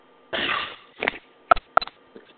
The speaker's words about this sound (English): Yep, sorry, I sneezed.